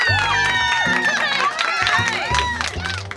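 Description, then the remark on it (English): A crowd applauds and cheers steadily for a comedian being introduced during stand-up week on the show Chompers, with rising and falling whoops over continuous clapping, all loud and sustained, while a low thumping beat runs underneath. “It's stand-up week on Chompers, so let's get a round of applause going for our next comedian”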